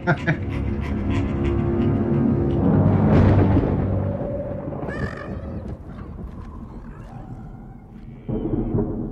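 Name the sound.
rumbling thunder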